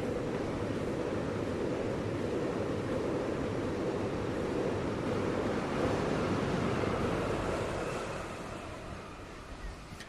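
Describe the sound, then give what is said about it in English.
A passing train, heard from a national urban park, gives off a loud, steady roar with a deep rumbling low end that holds for several seconds, then eases off and fades toward the end. “Here's a train.”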